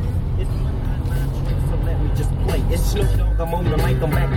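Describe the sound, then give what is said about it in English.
A steady low rumble of a car driving in heavy traffic on Highway 400 or 401 in Ontario, with constant engine and tire noise throughout and a muffled voice faintly audible underneath near the end. “So it's about a 3-hour drive, and I made the mistake of starting the journey with Highway 400 or 401, and it's just chock-a-block traffic.”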